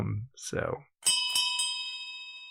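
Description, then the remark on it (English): A brass pub bell is struck three times in quick succession as the call for final drinks, its bright ringing tone lingering and slowly fading, just after a moment of indistinct talking. “And now I hear in the background the call for final drinks.”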